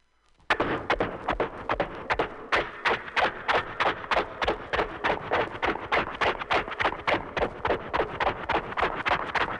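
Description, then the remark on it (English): A ridden horse's hooves clatter at a steady trot, a brisk, even rhythm of sharp hoofbeats that continues throughout with no voices. “Now we bring the horse up to a trot.”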